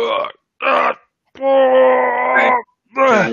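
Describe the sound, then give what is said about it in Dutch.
A voice imitates a heavy door creaking open as it is pushed, with a squeaking hinge: four loud, strained, groaning bursts, the third held long and wavering, the last bending upward in pitch. “De deur die geeft wel, je hoort wat gekraak, piep van de schenier.”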